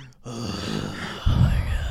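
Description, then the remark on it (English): Heavy mouth breathing right against a microphone, a breathy rush that swells louder halfway through, with a low rumble like air blowing on the mic, and no words spoken. “I'm just mouth breathing into the microphone.”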